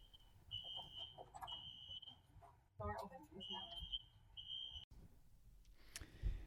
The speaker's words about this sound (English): We had a little interruption with a fire alarm, so we're glad to be back